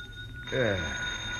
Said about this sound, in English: I switched on the light and looked at my watch. It was 1 in the a.m., and the phone on my bed table was screaming for an answer.